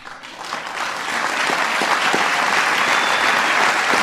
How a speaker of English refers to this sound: People applaud wildly.